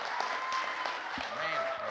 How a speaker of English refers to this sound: Okay, it worked. You guys were clapping loud.